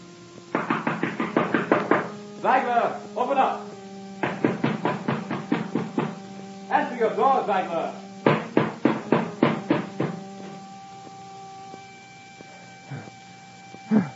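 Loud, insistent knocking on a door in several rapid bursts of repeated blows, separated by brief pauses, with a muffled voice between the bursts demanding the door be opened, before it fades to quiet.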